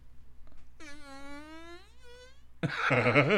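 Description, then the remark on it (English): A long, buzzy fart noise made into a microphone, with a steady, slightly wavering pitch, lasts under two seconds, then a short pause, followed by a louder, rougher and noisier blast. No one speaks. “Okay, so, I don't want to waste the entire podcast just making fart noises, but you guys get the get the picture, okay?”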